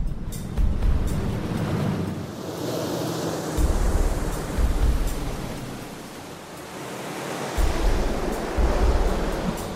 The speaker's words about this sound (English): We've sealed up the cockpit area. We've taped it up so it's on there good. It's tight. And we've left the plug open. And we're going to have the water come over the kayak and see just how much water goes into the plug.